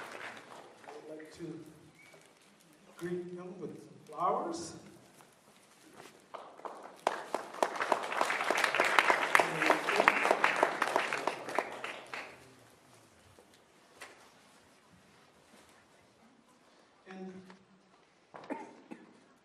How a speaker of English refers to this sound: I would like to invite both of you to come here. Round of applause. Thank you.